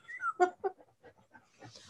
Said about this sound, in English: Would you stop? This dog is breathing so loud.